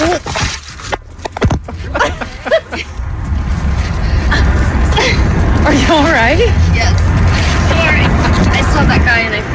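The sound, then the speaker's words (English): A couple of heavy thuds land close together near the start as a person, their bike and their phone all fall to the ground at the same time, followed by loud, excited voices crying out and talking over wind-like rumble. “The double thud of that, I mean, it just makes me.”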